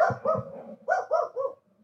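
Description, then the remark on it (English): Dogs bark in a quick burst of about five sharp barks, two at first and then three more in fast succession, with no one talking over them. “Let me get these dogs to shut up.”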